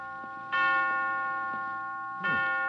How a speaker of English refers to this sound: 5 o'clock. I didn't know the hospital had chimes.